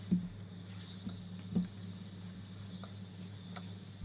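Sparse, irregular clicks of typing on a computer keyboard as rugby player names are typed in, soft, scattered over a few seconds above a steady low electrical hum, with no one speaking.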